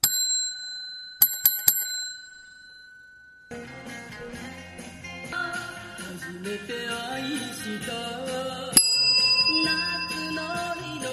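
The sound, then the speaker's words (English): A bright, big bell rings out with a long, shimmering ring, then is struck again in a quick cluster of hits before upbeat Japanese pop music starts, with one more ding over the music. “That's the big bell.”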